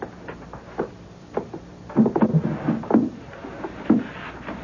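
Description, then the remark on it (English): A series of wooden knocks, scrapes and rattles, irregular and moderately loud, as the drawers on the left-hand side of a desk are pulled open and their contents emptied out, with no talking. “Just the drawers on the left-hand side of the desk. Well, why don't you empty them while I take these down to the wagon?”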